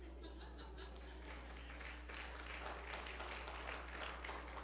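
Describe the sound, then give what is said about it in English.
A church crowd gives the Lord a hand clap during a sermon, clapping steadily for several seconds, many hands producing a dense, continuous wash of applause, with faint scattered laughter underneath and no one speaking. “Can you give the Lord a hand clap?”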